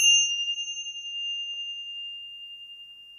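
A single clear meditation chime is struck once and left to ring, its bright metallic tone shimmering with a slow waver as it gradually fades. No voices accompany it.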